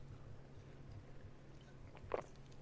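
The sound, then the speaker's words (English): Someone drinks water, with faint wet mouth sounds leading to a single distinct gulp near the end, all over a low, steady background hum. “Water break.”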